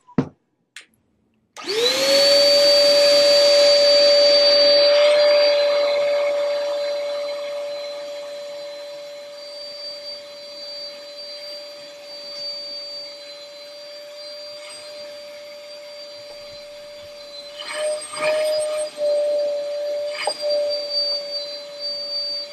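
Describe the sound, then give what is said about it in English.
A vacuum cleaner starts after a couple of clicks, surging into a loud, steady motor whine with rushing hiss. It settles slightly and runs continuously, with a few bumps and knocks near the end. “All right, yeah, I'm going to skip the vacuuming part.”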